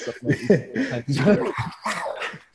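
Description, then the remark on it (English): A man growls in rough bursts, imitating a mountain lion. The snarling vocal comes in several loud, uneven pulses over a couple of seconds. “My dog just looked up at that growl.”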